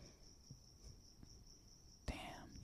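A cricket chirps in a steady, high, pulsing trill that runs the whole time, soft, until a brief rustling burst and a sudden loud noise cut in at the end.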